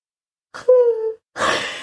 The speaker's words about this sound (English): It's because I'm thinking I'm going to have to fucking edit that fucking yawn out.